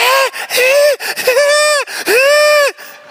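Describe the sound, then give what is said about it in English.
A person imitates the high-pitched, nervous shriek their dog Bear made the whole time riding in the car to the park: a string of four or so strained, whiny squeals that bend up and down in pitch, loud and with no other talking. “And we'd put him in the car, and the whole time he would do like this high-pitched, nervous shriek.”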